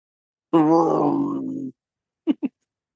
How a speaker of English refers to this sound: That is not much of a Kong roar.